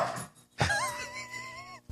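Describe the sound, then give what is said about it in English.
A dog gives a high, wavering whimper for about a second, just after a sudden rough scuffling thump, as a little dog yanks on a big dog's tail. Nobody is talking. “Oh, dude, that little dog is yanking on the big dog's tail.”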